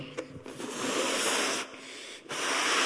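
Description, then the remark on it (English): Air rushes out of a balloon in a steady, breathy hiss, briefly cutting out twice before resuming at full strength. No one speaks over it. “You know, and we're like a bit like this balloon. The pressure builds and builds, and we've got to do something with it.”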